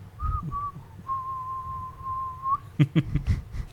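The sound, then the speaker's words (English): A person whistles a brief tune, the Rainbow Road music from the video game: two short notes, then one long steady held note, followed by a few quick clattery sounds and low background murmur. “You should whistle it. You're known as the whistler.”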